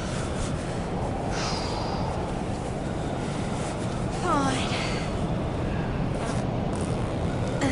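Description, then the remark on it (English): Labored, raspy breathing with a snorting catch from an injured man with frostbite, beneath a constant roar of wind noise. A brief squeaky sound briefly cuts through midway. “He's still breathing.”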